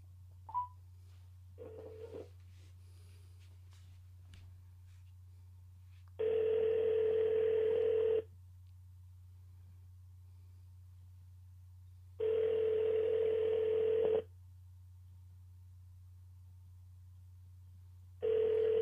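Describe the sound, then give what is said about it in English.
An outgoing phone call's ringback tone repeats three times, each steady buzzing ring lasting about two seconds with long silent pauses between, clear over a low constant hum. “let's bring Sicarii in the conversation. Uh-huh. If he picks up the phone and shit.”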